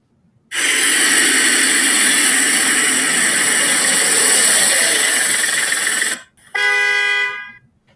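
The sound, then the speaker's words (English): A car engine runs loud and steady for about six seconds, cuts out briefly, then a shorter blaring burst follows, as a teen waits in his car to pick up his friend on Halloween night. No talking. “Yo, bro, get in the car. You're wasting my gas, man.”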